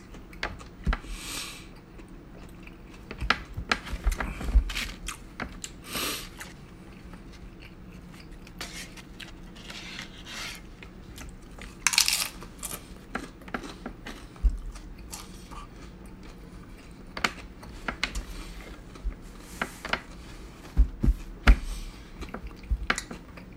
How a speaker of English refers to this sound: I always love nachos because of the crunchy. It's like, if you eat any kind of like soft Mexican food, just having some tortilla chips there kind of like give it a little extra crunch. It's amazing.